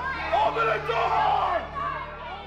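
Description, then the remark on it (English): An angry, extremely well-armed mob inside the Capitol shouts and yells at once while racing up the stairs and filling the hallway in front of the Senate chamber during a session, a loud, continuous roar of overlapping angry cries with no single voice standing out, sustained through the whole stretch. “And that is how an angry and extremely well-armed mob ended up inside the Capitol, racing up the stairs and filling the hallway in front of the Senate chamber where a session was in progress.”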